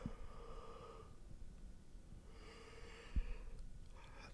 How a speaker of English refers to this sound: sorry, I just yawned.